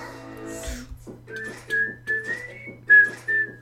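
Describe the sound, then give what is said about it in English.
A person whistles the melody of a catchy song, a string of bright sustained notes in a bouncy rhythm over a low steady hum, with no talking. “I like whistle this at work and then people yell at me.”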